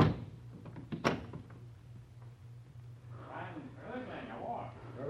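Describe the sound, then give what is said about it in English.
A door shuts with a solid thunk and is locked near the start, accompanied by a few small metallic clicks, over a low steady hum; muffled voices begin talking a couple of seconds later. “I lock the door.”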